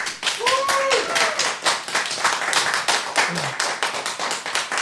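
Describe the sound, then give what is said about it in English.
An audience applauds to vote that rock is better than rocks, with dense, rapid clapping that holds steady for about five seconds. A brief vocal whoop rises over the clapping early on, and faint voices are mixed into the noise. “Weirdly, that sounds like less applause.”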